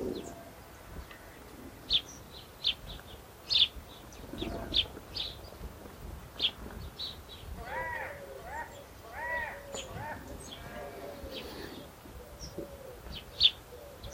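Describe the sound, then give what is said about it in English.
Doves coo softly in a few repeated phrases as they fly out from oak trees and land in a field among sheep, set among sharp, scattered chirps from small birds, thought to be hedge sparrows (dunnocks) in a hedgerow, in an open outdoor setting, all fairly quiet. “Can hear the cooing of some doves.”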